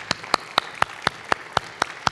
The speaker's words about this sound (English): Let's stand. Let's give the Lord a clap offering, shall we? Thank you, Jesus. Praise the Lord.